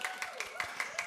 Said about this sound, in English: Monique is a licensed marriage and family therapist. You can cheer for her. That's fine.